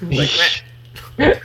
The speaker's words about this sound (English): Stop yowing back here. I mean, he sounds really cute, so... He's really cute. Sometimes his meows comes off of, squawks.